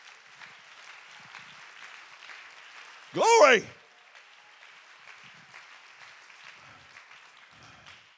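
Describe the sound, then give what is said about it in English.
An audience claps steadily throughout, a dense, crackling patter of many hands at moderate loudness, broken midway by one loud, brief shouted exclamation that rises above the applause. “Go ahead and clap your hands right now.”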